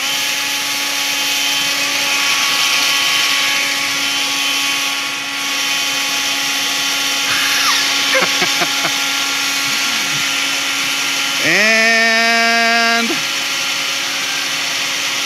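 Small blowers unroll toilet paper in a race to see which unrolls it fastest, whirring in a steady, buzzing motor hum throughout, with a few brief rattles midway and a sharp rising whine as one revs up near the end before settling.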